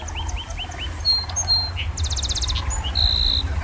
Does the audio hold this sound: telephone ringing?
no